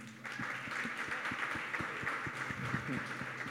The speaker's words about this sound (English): So, round of applause for the team.